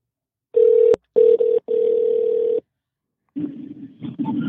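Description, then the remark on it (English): A telephone ringback tone plays during an outgoing call to someone's cell phone: a steady electronic tone in short bursts with brief gaps, clear, then a short stretch of muffled line noise. “First time calling someone live while recording on the podcast. So get a hold of Josh here. I'm going to call him.”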